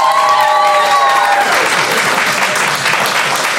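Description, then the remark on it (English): Loud, sustained applause from a large crowd, a dense roar of clapping that fills the whole clip, with a few thin whistle-like tones fading out early on. “Thus democracy dies with the sound of tumultuous applause.”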